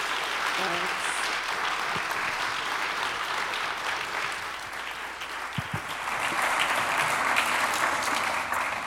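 Sustained applause from an audience for Dorothy Roberts after she spoke, a dense steady patter of many hands clapping at even loudness for several seconds, swelling slightly toward the end, with no talking over it.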